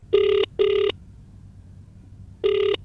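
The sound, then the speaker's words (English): A phone line rings out with the classic double-burst ringback tone as a sales call is dialed, two short rings, a pause, then another pair starting, steady and clear with a faint hum underneath and no voices. “As soon as your gums go numb, grab that phone and commence dialing.”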